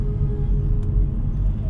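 Steady low rumble of a car cabin while driving, a constant engine and road drone that fills the background evenly, with no voices and only a faint brief rustle partway through.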